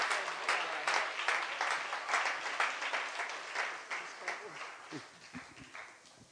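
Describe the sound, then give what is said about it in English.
An audience claps steadily for several seconds, a dense, even patter of many hands at moderate volume that slowly thins toward the end, with a few faint voices or calls mixed in. “Let's give her a hand clap today.”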